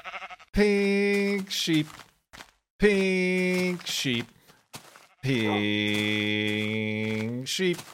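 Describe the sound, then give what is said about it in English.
A pink sheep bleats three times, loud, each cry a nasal, wavering baa, with the final one drawn out longest, separated by short quiet gaps. “Look at his pink sheep. Right next to the hidey hole.”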